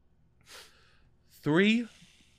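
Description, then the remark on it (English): A deep, heavy breath: a brief airy inhale, then a louder, drawn-out exhale that turns voiced and falls away, like a heavy sigh. “You're heavy breathing. I took one deep breath.”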